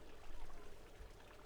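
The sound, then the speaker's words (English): Fountain water trickles softly and steadily, a faint continuous burble with no voices, gently rising then settling slightly, as a coin is let drop into the fountain. “You take a deep breath in, and once you feel your wish fill you, with your exhale, you let go of the coin and let it drop into the fountain.”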